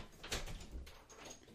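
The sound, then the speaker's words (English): A door slides or swings open with a short scraping rush and a low rumble, fairly quiet, to let in Floyd, a pet knocking at it, then a soft settling sound as it comes to rest. “Now we have to let Floyd in because he's knocking at the door.”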